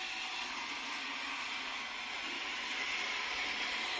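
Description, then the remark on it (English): A steady, whirring mechanical clatter with a fine ratcheting texture: David's model railway, a model train running continuously on its track at an even, moderate level, with no voices. “Here's a quick reminder of David's model railway.”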